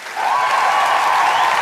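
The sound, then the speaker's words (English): A short burst of canned applause and cheering played from a soundboard applause button, steady and fairly loud for under two seconds, with no one speaking over it. “Just got the applause button. It feels good to hit.”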